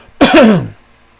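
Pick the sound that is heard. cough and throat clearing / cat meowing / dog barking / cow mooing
cough and throat clearing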